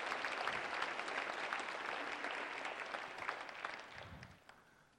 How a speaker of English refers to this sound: The rest of you, I want you to clap and applaud these right now. I want you to applaud these.